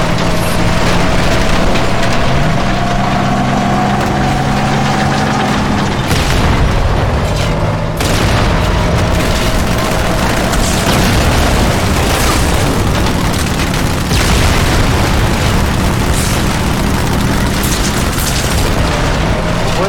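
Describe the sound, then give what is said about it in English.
Heavy cannon shots fired at enemy elites boom again and again, loud and irregular, over a constant dense rumble with a steady droning tone underneath. “Yeah, like, these elites are surviving the cannon shots.”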